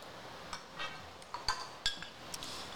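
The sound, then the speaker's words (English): Glasses clink together in a toast, two bright ringing taps close together among a few softer knocks and clatters, fairly quiet with no one speaking. “Cheers to that.”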